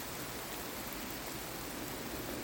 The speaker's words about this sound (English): Okay, the rain is falling heavier, which means that my tree cover is looking already slightly less effective, but I'm hoping that that heavier rain is going to pass and we'll get something kinder in just a moment.